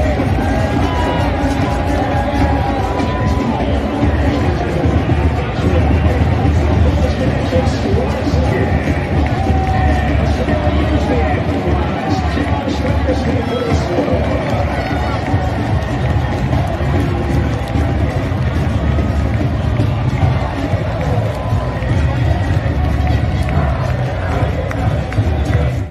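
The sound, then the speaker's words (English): A stadium crowd at a soccer match roars in an extended celebration after a goal, a dense, loud wall of cheering and shouting that holds steady for the whole stretch without letting up. “The extended celebration after the goal went on and on and on.”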